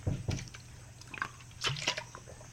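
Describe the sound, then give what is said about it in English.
Quiet liquid sounds: a few short splashy sloshes and gurgles spaced out over a couple of seconds, like water being poured or sipped, with no one speaking. “I wonder if I have water. There is some water.”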